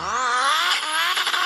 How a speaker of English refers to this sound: Now we need the sound effects of the cars.